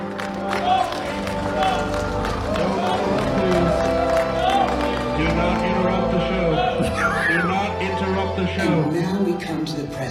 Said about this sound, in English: Our favorite thing to do is to assign secretly throughout the audience random presidents that people cheer for.